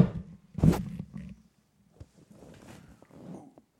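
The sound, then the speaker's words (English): A loud, buzzy fart bursts out in one short blast, followed by a couple of softer, rumbling sputters trailing off over the next few seconds. No one speaks. “I farted so loud so many times, I didn't put the mic there, but that one.”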